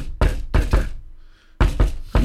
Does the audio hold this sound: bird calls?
no